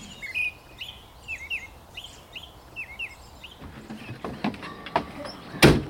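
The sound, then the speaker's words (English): Birds sing outdoors at dawn in spring, with a run of repeated, bright chirping phrases at a steady pace. The song fades, then some sharp knocks and a louder clattering thud follow near the end. “So in the spring, you go out for a dawn walk and the sound of birdsong is so overwhelming.”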